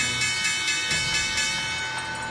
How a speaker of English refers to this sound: Guys, there's the bell at no the NYSE. Big Capital Three celebrating its recent listing.